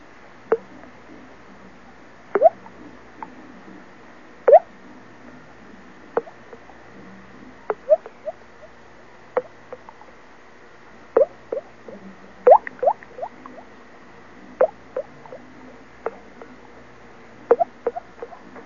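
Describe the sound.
A voice imitates dripping water with a string of wet, hollow mouth plops, clear, landing at an irregular, unhurried pace with brief silences between, and no talking.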